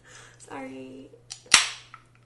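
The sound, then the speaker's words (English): A can of double dry hopped India Pale Ale with Citra hops and vanilla cracks open with a single sharp, loud pop that trails into a brief fizzing hiss, preceded by a short hum-like vocal sound and faint handling noise. “Crack these boys open.”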